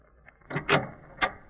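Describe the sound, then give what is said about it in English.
A door is opened by Watson at Sherlock Holmes's request: a faint click, then a couple of louder rattling clunks from the latch and handle, and one final sharp knock of wood as it swings free. “Open the door, Watson.”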